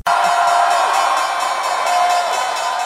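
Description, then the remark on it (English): The New York Stock Exchange opening bell on Wall Street, rung by biotech firm Ginkgo Bioworks for its new listing: a loud, continuous bell with rapid, evenly spaced strikes over a crowd cheering and whooping throughout, starting abruptly and holding steady for a few seconds. “The opening bell is sounding. You just heard it there on Wall Street, as John Tuttle just mentioned.”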